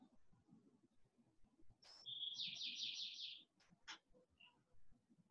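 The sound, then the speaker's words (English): A bird outdoors sings a bright, rapid trill lasting about a second, followed by a few short, sharp chirps over a soft, steady background hush. “Thank you, birds.”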